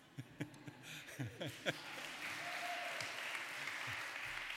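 An audience at St. Michael's church breaks into steady applause as a person walks up, a dense, even patter of many hands clapping at a moderate level, with a few murmuring voices audible near the start.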